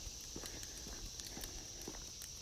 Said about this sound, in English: But listen to the sound of the cicada.